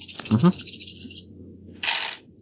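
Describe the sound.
A big handful of dice rattles and clatters for about a second, with a brief murmur of voice underneath, then a second short burst of clattering dice.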